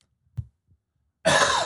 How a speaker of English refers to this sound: How's that cough going? Oh, it's great.